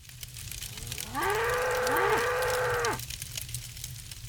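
A single drawn-out cow moo rises and holds for about two seconds, loud, over a low steady background hum with no one speaking.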